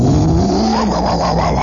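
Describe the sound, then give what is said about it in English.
A voice imitates a tornado's roar with one loud, sustained low rumbling drone, its pitch wavering and lifting slightly midway, like a revving engine, lasting under two seconds. “I could hear the air shuddering, and she just went right over the building, not more than maybe, 40 or 50 feet away from me.”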